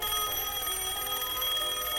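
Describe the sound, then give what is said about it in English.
A telephone on a nightstand rings continuously at 3:11 a.m. in an apartment in Baltimore, Maryland, a bright, shrill trill that stays steady and loud throughout with no pauses, and no voices. “I picked up the phone from my nightstand.”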